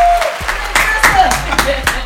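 A handful of people clap in a loose, uneven burst of about seven sharp claps over two seconds, with some faint vocal sounds mixed in underneath.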